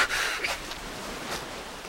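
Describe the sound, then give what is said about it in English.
Breathy, hissing gasps of air come in short bursts from dolphins stranded on a beach on Cape Cod, a few sharp exhalations over a steady noisy background. “The beached dolphins gasp for air, like someone with asthma.”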